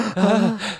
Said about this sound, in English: So, gasp. Gasp. Gasp, hiccup.